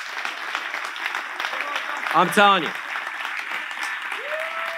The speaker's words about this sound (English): And I don't need the hand claps, but Jesus does.